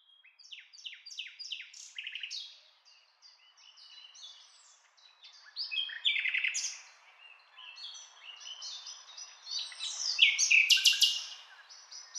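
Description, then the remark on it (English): A nightingale sings a rich, varied song of rapid repeated notes, whistles and trills, rising in intensity toward a loud burst near the end, with no voices. “But this is the beautiful song of the nightingale.”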